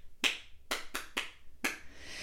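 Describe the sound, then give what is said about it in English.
Five sharp, crisp hand claps in an uneven pattern, a single clap, three quick ones, then a final clap, the clapping style used in a school assembly, with no one talking. “You know, that's come from the head, and the head said, no, in assembly now we're going to clap like this.”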